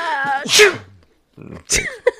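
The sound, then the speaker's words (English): A loud sneeze bursts out after a short voiced wind-up, followed a second later by another sharp sneeze and a brief vocal catch at the end. “Okay, but let's get back together here after I sneeze.”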